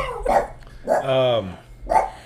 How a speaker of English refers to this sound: You're just going to talk while we're barking. Yeah, I am. I'm going to talk while she's barking.